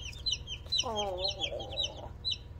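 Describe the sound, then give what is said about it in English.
Baby chicks cheep in quick, high-pitched bursts throughout, while a longer, lower clucking call rises in the middle, all over a steady low background hum. “Oh my, look at the baby chicken. Look at the little chicken.”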